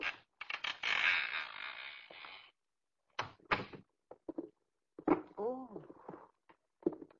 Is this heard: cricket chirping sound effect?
no